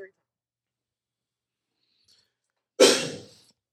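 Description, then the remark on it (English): A single loud, forceful cough bursts out after a stretch of near silence, with a sharp harsh onset that trails off quickly. “Your cough was too powerful.”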